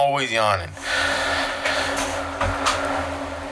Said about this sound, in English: I wasn't tired before I started talking. And I'm not tired now. I'm just yawning for no reason. I guess I'm not breathing enough. I always yawn when I talk. If you look back at all these episodes, I'm always yawning.